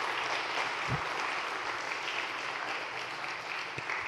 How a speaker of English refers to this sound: So can we give them another round of applause? We thanked them last week, but...